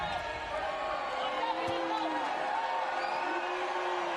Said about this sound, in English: An excellent crowd here at the Marriott Center on this Saturday evening.